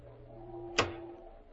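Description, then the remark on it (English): A single sharp metallic crack as a burglar forces open a window lock to get in snaps out once midway through, fairly loud against a steady low hum, with no voices. “He broke the lock like a veteran.”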